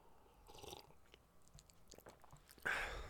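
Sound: sipping a drink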